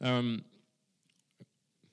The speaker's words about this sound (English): Just realised I got a bit of chewing gum in my mouth. I'm like one of those American preachers looking around to spit it out.